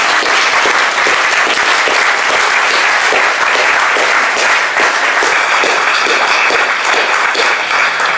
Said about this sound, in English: So when we honour them because it was amazing that they led us into the presence of God, but just understand what that actually means in their real lives. So let's clap them again, but with a bigger clap.